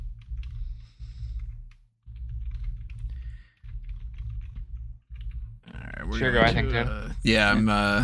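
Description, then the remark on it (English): Soft, irregular keyboard typing clicks over a low rumbling hum, followed near the end by a voice talking. “You can hear all the typing and everything.”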